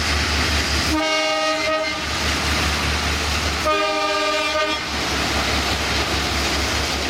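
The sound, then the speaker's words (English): A small cane train rumbles steadily past while its horn sounds two loud, sustained blasts a few seconds apart, with no voices present. “Now, do they still have the little cane trains that run around, or is that all gone now?”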